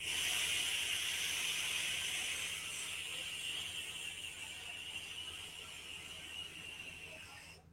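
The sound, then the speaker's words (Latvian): A long, steady airy hiss of vapor exhaled from a vape pod with a wider mouthpiece, inhaled directly into the lungs to make a large vapor cloud, with a faint whistling edge, sustained for several seconds and slowly fading at the end. “Un tad viņam nāk otrs tās podiņš ar plašāku šito iemutnīti, jā, bišķi lielāk tādu diametru, un to tad veipo šādā veidā.”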